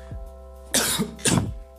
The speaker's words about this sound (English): I'm sorry I'm coughing, I'm not sick. Well, I kind of am.